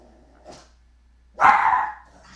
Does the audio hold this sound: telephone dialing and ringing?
no